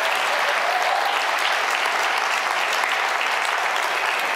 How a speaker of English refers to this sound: And can we just give your pastors, all of them, big, huge hand clap for how they've lived. It's been amazing.